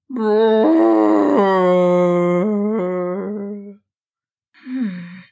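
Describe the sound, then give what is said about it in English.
A long, pained bellow from a voice imitating a dragon, loud and sustained with a wavering, mournful pitch, trailing off before a short, falling groan follows after a brief silence. “Susan then heard a painful-sounding bellow coming from the dragon.”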